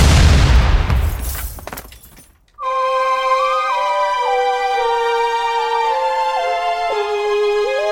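A loud explosion bursts out and rumbles away over a couple of seconds, then gives way abruptly to steady, sustained electronic music with shifting tones.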